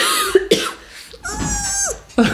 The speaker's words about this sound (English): I have a tickle in my throat and I'm saving it. You're saving it for what? To cough? Yes. All right, let it out.